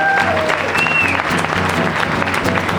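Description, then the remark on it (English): A theatre audience at the Leicester Square Theatre applauds loudly and steadily, dense clapping with a few whistles cutting through near the start, sustained throughout without pause. “Thanks very much to our audience of freaks. Give yourself a round of applause.”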